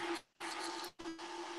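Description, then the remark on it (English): A kettle boiling: a loud, steady rushing hiss with a low hum underneath, surging in three bursts separated by two brief dips, with no voices. “The kettle's boiling.”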